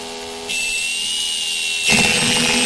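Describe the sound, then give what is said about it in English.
A high-pitched dentist's drill whines steadily, rising in intensity partway through as it bites in, with a thin sustained tone and no voices, fairly loud. “This is another one I don't like as well. Dentist. The drill.”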